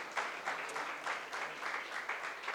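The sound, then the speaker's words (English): A church audience applauds itself steadily, many hands clapping in a dense, continuous patter that stays fairly even in loudness throughout, with no voices rising above it. “Give yourselves a beautiful applause.”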